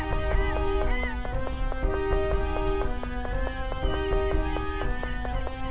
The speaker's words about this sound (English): Eventually those seagulls are gonna break through.